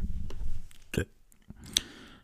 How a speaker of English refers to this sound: Just burping as usual.